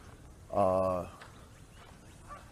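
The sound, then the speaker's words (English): A duck lets out one loud, nasal quack lasting about half a second, followed by quiet outdoor background with faint, indistinct sounds. “He'll say hi to the ducks.”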